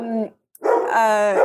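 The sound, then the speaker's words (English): Two loud barks or yelps from pet dogs: a short one, a brief pause, then a longer, drawn-out howling bark with strong harmonics. No one talks. “Sorry, my dogs are barking.”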